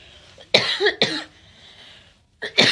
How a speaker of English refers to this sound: Oh my God, I'm gonna cough.